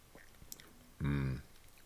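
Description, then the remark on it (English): A quiet sip of bourbon from a glass: faint wet mouth clicks, then a brief low, throaty swallow-like hum. No talking. “So let me take another sip and try to get a better feel for the finish of this bourbon.”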